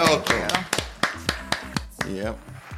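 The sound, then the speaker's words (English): A crowd claps to welcome a guest, steady, sharp claps repeating about four times a second, loud and crisp, while voices talk underneath throughout. “The crowd loves you.”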